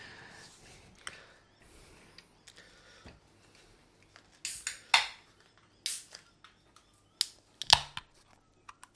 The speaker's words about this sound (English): Yes, so it's time to crack a tinny. Crack a tinny. I mean, you're not wrong. And you're open. Yeah. Yeah, let's, and as they say in, or well, used to say at least in WWE, it's been a while since I watched it, let's open a can. Open a can.